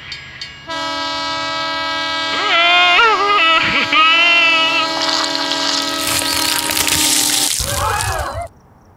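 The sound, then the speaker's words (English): A train approaches on the tracks, its horn blaring in one long, loud sustained blast while the roar of the passing cars builds to a rushing hiss before abruptly cutting off. “I'm tied to some railroad tracks right now.”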